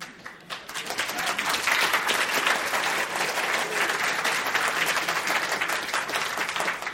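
A large audience breaks into sustained applause, a dense wash of many hands clapping that swells quickly and holds steady and loud for several seconds, with no voices standing out.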